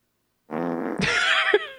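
A single drawn-out fart, starting as a low buzzing tone and breaking into a wet, sputtering rasp, loud, ending with a short pop, with no talking.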